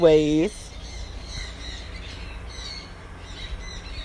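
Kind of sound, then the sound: bird, many birds squawking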